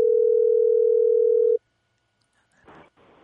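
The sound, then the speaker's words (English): A loud, steady phone ringback tone sounds once for about a second and a half, then cuts off to silence, followed by a couple of short, faint rustling bursts. “But I don't know if he's going to answer the phone, though.”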